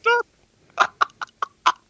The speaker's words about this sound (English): It's a duck.